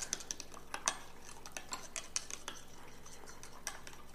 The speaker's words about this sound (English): It's at the point where mixing this by hand with a spoon would be better. I grabbed a straw to finish mixing.